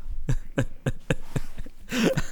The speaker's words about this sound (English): Let's sniff some more smelling salts.